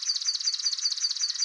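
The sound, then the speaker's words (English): A rapid, even trill of high chirping notes repeats steadily throughout, a recording of a swamp sparrow's song at moderate loudness with no voices or other sounds around it. “by raising 9 male swamp sparrow nestlings in a soundproof room and exposing them to recordings of song types sung by adult males of their species.”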